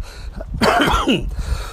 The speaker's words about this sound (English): I still have a cough, I still have a sore throat. But it's been two bloody months.